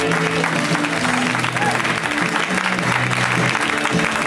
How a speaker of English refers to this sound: Your next comedian is from Ireland. She is Irish. Please clap it up for the very funny Aisling B.